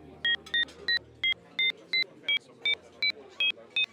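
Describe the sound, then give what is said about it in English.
A rapid, even series of about eleven telephone keypad dialing tones, each a short two-note beep, loud over a faint low background rumble. “We live together, so I can do it in one phone call handily.”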